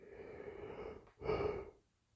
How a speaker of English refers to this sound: Apologize for yawning. It's 5:30 in the morning. I haven't slept yet.